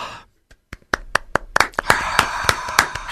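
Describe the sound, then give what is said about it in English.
A crowd applause sound effect begins with a few sharp, scattered claps, then quickly builds into a denser, louder burst of clapping with a noisy wash underneath. No one speaks. “The crowd goes wild.”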